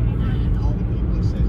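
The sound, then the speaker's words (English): Steady, continuous low rumble of a car driving along a road past miles of trucks, engine and tire noise droning evenly throughout with no distinct passing swells. “Kind of like a measuring stick for us as we're driving along.”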